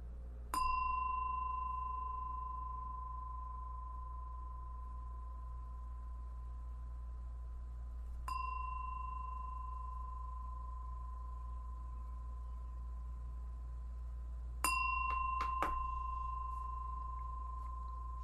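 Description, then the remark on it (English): A meditation bell rings three times, each strike spaced several seconds apart and left to hum with a long, clear sustained tone over a low background rumble. “And I'm going to ring my bell 3 times, and then we'll begin.”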